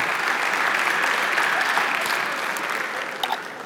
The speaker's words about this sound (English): Thank you for doing that. There you go. Can we clap for these guys, please?